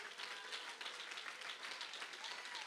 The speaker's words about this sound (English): Oh, if you believe that, somebody clap your hands.